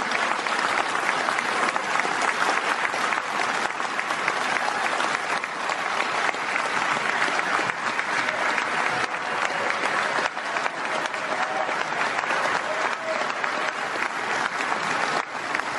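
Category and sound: crowd, applause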